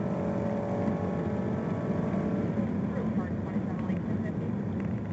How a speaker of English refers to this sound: You can see him in his Dodge truck just weaving and bobbing and out of traffic, in and out of traffic.